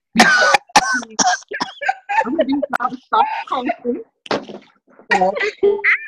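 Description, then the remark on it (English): A few sharp, loud coughs burst out near the start, then give way to animated vocalizing that carries on with more short coughing and throaty sounds mixed in. “… does the cough thing, okay?”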